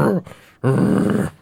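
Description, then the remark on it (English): A dog growls, a short rumble followed after a brief pause by a longer, louder, sustained growl. “are you still barking? Calm down.”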